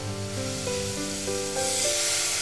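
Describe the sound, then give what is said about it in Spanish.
Water (50 millilitres) poured onto 200 grams of sugar in a hot saucepan to make caramel sets off a steady sizzling hiss that grows brighter and louder toward the end, with soft tonal music running underneath and no talking. “Ponemos el azúcar en el cazo caliente, añadimos el agua.”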